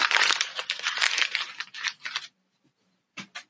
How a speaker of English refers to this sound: For those listening, he balled up the paper and threw it over his right shoulder.